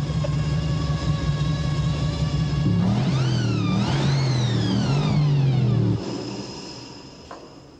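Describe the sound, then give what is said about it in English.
A powerful supercharged V8 car engine running on nitro, with twin overhead tanks and 600 horsepower at the wheels, idles with a deep, steady rumble, then revs hard twice, pitch sweeping up and down with a whining blower tone, before cutting back to a fading idle. “Twin overhead tank. 600 horsepower through the wheel. With the blower.”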